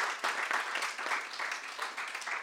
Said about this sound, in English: Excellent. Round of applause for